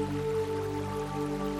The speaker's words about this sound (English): Watch the gentle flow of a mature river meandering through a broad river valley and relax. Listen to the gentle burble of water, a balm for the soul.